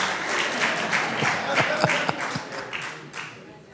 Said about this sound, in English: Woo. Oh, that's the ladies clapping.